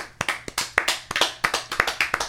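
A quick run of sharp hand claps, about a dozen in just over two seconds, bright and snappy with a slightly uneven rhythm and no voices.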